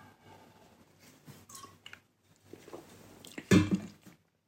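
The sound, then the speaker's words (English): Someone takes a drink of water: soft handling noises and quiet gulps and swallows, ending in a sharp, louder burst, like an exhale or a container being set down. No one speaks. “Hang on, I gotta take a drink. I'm dehydrated.”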